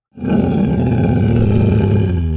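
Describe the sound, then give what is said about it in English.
The demon dog Cerberus, the two-headed guardian at the entrance to hell, lets out a deep, sustained roar, loud and rumbling with a harsh, gravelly low growl that holds steady for about two seconds without any talking. “Indeed, the foul demon Cerberus, the two-headed dog, guardian at the entrance to hell.”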